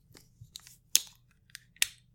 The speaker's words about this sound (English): Sometimes you just have to open a water bottle on a mic.